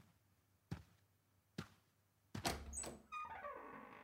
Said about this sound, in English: Do you know what that sound was? It's the door of Cowie's bedroom.